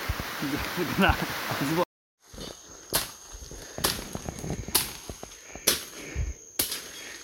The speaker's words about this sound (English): You can hear the clang of a machete. Yeah. It's because it's pitch black now and we're building a shelter.